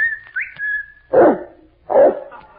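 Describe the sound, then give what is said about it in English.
A sustained whistle with a quick upward slide calls out for a dog named Kelowna, then two loud dog barks answer, spaced almost a second apart. “I'll whistle for Kelowna.”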